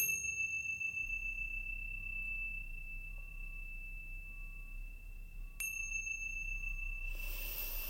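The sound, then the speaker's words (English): A meditation chime rings with a long, pure sustained tone that hangs in the air, struck again midway with a bright shimmer, then a soft rushing noise rises at the end. “Now wiggling your fingers and wiggling your toes when you hear the sounds of the chime coming back into this space.”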